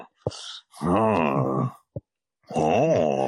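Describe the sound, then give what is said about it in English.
A person imitates a man grunting, with two long, strained, moaning vocal bursts separated by a pause, plus a couple of sharp clicks in between. No words are spoken. “You want to talk about grunting? Like, this guy just.”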